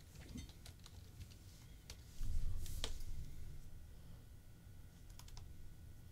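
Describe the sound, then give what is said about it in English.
Keys clatter on a computer keyboard in irregular bursts of sharp clicks as someone types a search for Kip from Napoleon Dynamite, quiet, over a low background rumble that swells briefly partway through. No one speaks. “This keyboard sucks.”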